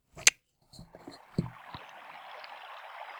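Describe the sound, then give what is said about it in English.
A sharp click and a few soft knocks and thumps give way to a steady, hissing wash of water from the Salinas River in California, picked up by an ambient microphone outdoors on the river; it carries on evenly to the end, with no one talking. “I'm going to turn on this ambient microphone because we're out here on the river, so I want people to hear what's going on.”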